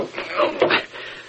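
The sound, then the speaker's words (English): A wooden desk drawer slides open with a brief scraping rumble and a soft knock partway through, moderately loud, lasting just over a second. “Here, the desk drawer. The papers. Papers gone.”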